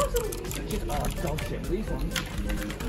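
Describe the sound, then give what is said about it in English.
Fast, steady clicking of mechanical keyboard switches, a dense run of sharp taps, mixed with people talking and background noise throughout. “Look at my CPS, bro. I don't like these switches so much, but I like these switches.”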